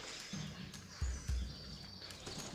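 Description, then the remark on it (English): Birds chirp and twitter steadily outdoors just after the rain has stopped, fairly faint, with a couple of dull low thumps partway through and no talking. “Oh wow, those birds are happy.”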